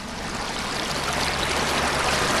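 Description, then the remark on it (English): Water of the Dan River flows steadily with a broad, continuous rushing and gurgling, fairly loud, with no voices or other sounds over it; the water is slightly murky after recent winter rains. “The water is now slightly murky and calm, despite the recent winter rains.”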